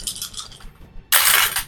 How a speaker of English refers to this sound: Are you going to chase after him? Yes. So go ahead and roll 4 dice. 15. I rolled a 16.